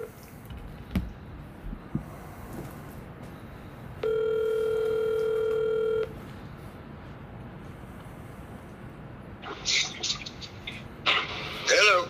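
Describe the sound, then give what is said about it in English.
A phone on speakerphone plays a steady two-second tone, like a dial or ringing tone, as a call is placed, amid faint room noise, followed by brief bursts of higher-pitched line sounds near the end. “You got it on speaker? I will. Sorry, guys. This is very technical. Yeah, it's a phone call.”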